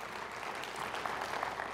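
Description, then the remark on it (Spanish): An audience applauding the Lord during a sermon, a steady wash of many hands clapping at moderate volume with no one speaking over it. “Un aplauso al Señor que se lo merece.”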